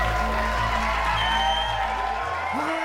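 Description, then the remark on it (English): A live show audience cheers and claps to welcome the hosts of the second annual Best Picture Awards (the Pickies), a steady, noisy wash with a low rhythmic thump pulsing underneath and a rising whoop near the end. “Hey, welcome crowd, thanks for coming out.”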